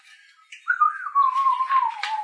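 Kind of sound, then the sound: human body sound, person whistling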